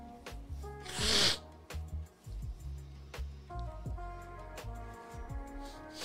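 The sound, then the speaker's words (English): Someone blows their nose once, a short, forceful, breathy honk, while steady background music plays on underneath. “Hold on, I gotta blow my nose.”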